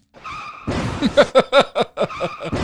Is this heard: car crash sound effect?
yes